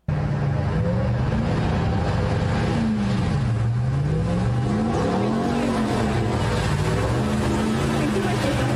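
A Dodge TRX pickup truck with a gigantic motor of more than 700 horsepower revs loudly, its pitch rising and falling over and over on a steady roar of road or wind noise, with no pauses.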